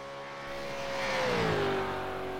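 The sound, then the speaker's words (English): A Supercars race car engine roars at high speed on a flying lap of a 5.77 km circuit averaging 195 km/h, growing louder and then dropping slightly in pitch as it sweeps by, with no voices over it. “There's a flying lap of the Cathedral of Speed.”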